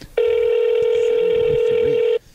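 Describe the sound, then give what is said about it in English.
A single steady telephone ringback tone sounds loud for about two seconds as a number with a 713 area code is called, then cuts off; faint voices murmur underneath. “can you call it?”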